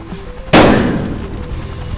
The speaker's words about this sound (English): Did you just shoot that woman? Like a lame horse.